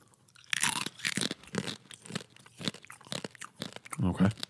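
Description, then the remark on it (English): Loud crunching as a hard treat is bitten and chewed, with a series of sharp, irregular cracks over several seconds, followed by a brief murmur of voice at the end. “Well, hey, I'm excited to crunch it, see what happens.”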